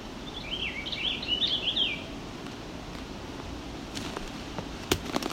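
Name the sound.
purple finch song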